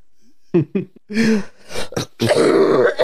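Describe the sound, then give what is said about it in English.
A loud fit of coughing from a sick person: two short hacks, then a run of longer, raspy coughs and throat-clearing sounds that grow rougher toward the end. No one speaks. “Oh my gosh, I'm so sick of coughing up along.”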